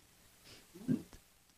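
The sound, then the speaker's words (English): A single stifled sneeze from a woman trying to cover it up, held back into a short, muffled snort-like burst, preceded by a faint breathy intake and followed by quiet. “trying to cover up her sneeze.”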